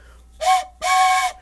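A train station whistle blows twice, a short breathy blast followed by a longer one, loud and shrill with an airy hiss and no talking.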